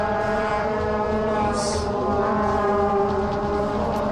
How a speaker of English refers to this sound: Air horns blowing off the head of an Arkansas player and clear of the penalty area left side.